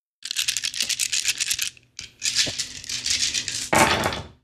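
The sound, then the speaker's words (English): A handful of dice rattle and clatter continuously, pause briefly, then clatter again and finish in a louder tumbling burst, with no voices; the dice are rolled for a tabletop role-playing game. “So roll it up, dough it up, mark it with an R.”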